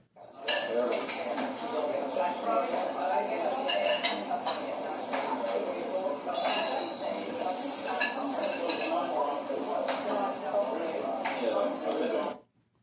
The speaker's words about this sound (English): You got it. Restaurant.